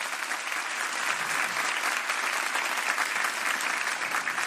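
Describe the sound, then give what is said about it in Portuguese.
An audience claps steadily in the evening, a dense, even wash of many hands giving God a round of applause for several seconds with no voices rising above it. “Can we give God a round of applause tonight?”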